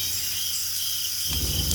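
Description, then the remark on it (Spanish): A steady, high-pitched chorus of crickets chirping in a forest at night, continuous, with a soft low rumble of background noise rising near the end. “Escuchas los grillos.”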